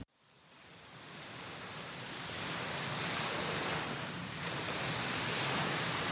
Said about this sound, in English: Picture yourself at the beach on a cloudy winter day. It is windy. You are standing at the edge of the water, gazing at the waves. Each time the water washes onto the shore, inhale deeply. Each time the waves wash away into the lake, exhale deeply.